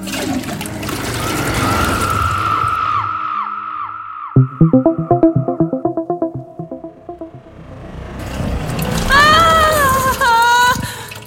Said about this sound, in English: Oh, I have to tell the toilet where we're going before we flush. I can't decide if I hope you're joking or telling the truth. Hit the handle and find out.